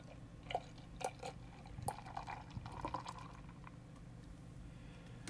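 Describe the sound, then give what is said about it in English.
A few sharp clicks and a fizzy snap as a 330ml can of 6 Point Brewery barrel-aged porter (11% ABV) is cracked open, followed by a steady, bubbling pour of the beer into a glass, with no talking. “I'm going to give it a crack. Use a good glass for this one, guys.”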